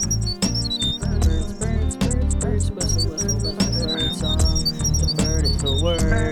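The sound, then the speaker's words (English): A short theme tune plays loud, with a thumping steady beat and deep bass, while high chirping, bird-like whistles dart over the top. No one speaks. “Hit the theme music.”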